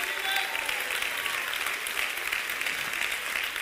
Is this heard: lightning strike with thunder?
no